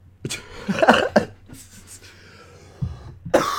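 A short coughing fit, set off by hearing the word "cheatling": several harsh, rasping bursts in quick succession, a brief pause, then a couple more coughs, with no talking.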